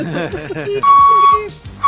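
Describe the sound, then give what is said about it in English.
A truck backing up a driveway sounds its reversing beeper, a loud, steady high-pitched beep lasting about half a second, then starts another after a pause. A voice talks just before the first beep. “The truck came up the back, backed up the driveway.”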